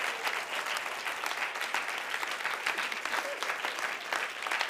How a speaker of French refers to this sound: If you have two hands, clap. Si vous avez deux mains, applaudissez.